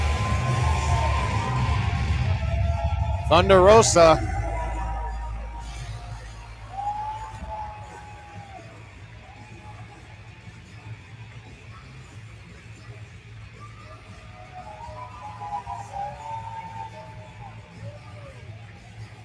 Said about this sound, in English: Huge standing ovation from the crowd here at Warrior.